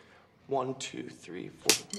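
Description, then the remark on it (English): A man's voice speaks briefly, then a single sharp, loud slap to another man's face cracks out during a tempo-counting drill, followed by a short breathy sound. “Slapping him.”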